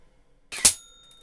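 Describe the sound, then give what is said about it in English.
A short puff from a blowpipe and a sharp metallic strike as an explosive dart hits a bell, followed by a clear ringing tone that sustains and slowly fades; a single hit, fairly loud, with no talking. “And what can't be seen on the podcast is the explosion of light as well as the dart hits the bell.”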